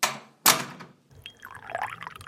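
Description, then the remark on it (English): Two sharp china clinks, then a steady stream of coffee, brought on a tray set on a desk, pouring into a cup, its pitch rising as the cup fills. No voices. “Just leave the tray here on the desk. I'll do the pouring.”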